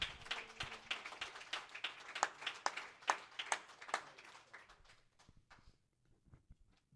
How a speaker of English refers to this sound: One more time, why don't you clap your hands and give God some praise.